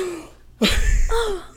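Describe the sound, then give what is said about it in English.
A sudden, loud fake gasp sound effect bursts in after a brief quiet moment, a sharp breathy intake that carries on for about a second, with a faint voice-like hum underneath and no words spoken. “I think in post we should get like a little fake gasping noises, like, oh yeah, we changed our name.”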